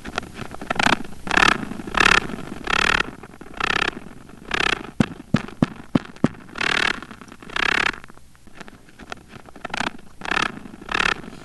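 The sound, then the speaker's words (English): Male wolf spider courtship drumming, vibrations meant to be felt by a female: a steady series of raspy, buzzing bursts, broken midway by a quick run of sharp percussive taps, then more rhythmic rasps. No voices. “So here's a sample of some mad, hot, and ready to go male wolf spider beats.”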